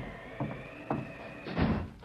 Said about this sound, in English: They close that door.